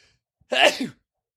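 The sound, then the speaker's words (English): A single sharp sneeze bursts out, loud and brief, with a noisy explosive onset and a short voiced tail before quiet returns. “I sneeze. Should I cut that out?”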